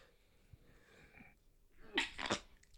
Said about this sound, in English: Bless you. What are you doing, fam? Four in a row. I sneezed so much that I got lightheaded.